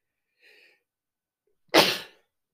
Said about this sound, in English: My sneezing attacks are hitting me again.